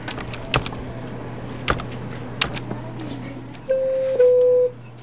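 A few separate key clicks on a computer keyboard, spaced about a second apart over a low steady hum, followed by a short electronic beep tone near the end.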